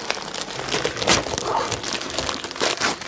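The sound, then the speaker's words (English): Continuous crinkling and crumpling of paper wrapping as a wrapped gift is unwrapped: the comic book Indiana Jones and the Fate of Atlantis, number one, from the 1991 Dark Horse Comics series. Sharp rustling bursts and irregular crackles last about three seconds, fairly loud and without voices. “As you have heard in the singing intro, today is 12 Indiana Jones Jonesing, which means we're unwrapping.”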